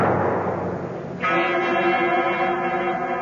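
After a moment of hissing noise, the bell at the great door of Carrig Cleaner is pulled once, giving a loud, sustained metallic clang rich in overtones that hums on steadily without fading much. No one speaks.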